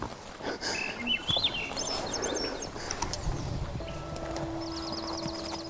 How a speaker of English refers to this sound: I come in peace and respect and honor. Having the birds sing.